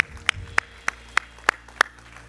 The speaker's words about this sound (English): Can we all give Jesus a big hand clap of praise? Can we do it?